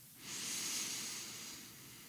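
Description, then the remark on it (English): A slow, deep breath drawn in through the nose to expand the belly, a soft airy hiss that swells quickly and holds steady for about two seconds, quiet, with no talking. “And now breathing in through the nose, directing that breath towards that hand to expand the belly.”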